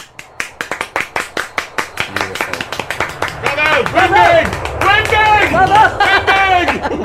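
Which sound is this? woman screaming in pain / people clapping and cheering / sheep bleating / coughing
people clapping and cheering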